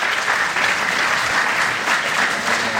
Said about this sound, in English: And the rabbi has dedicated his life to save the children of the community that find themselves on college campuses. So he deserves a round of applause for that.